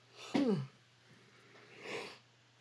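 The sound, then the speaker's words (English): A single yawn: a sharp intake that slides into a short, falling voiced groan, followed a moment later by a soft, breathy exhale. No one speaks. “Sorry, I had to yawn.”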